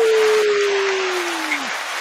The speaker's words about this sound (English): So give her a round of applause, viewers. Come on.